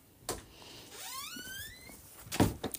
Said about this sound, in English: Close the door.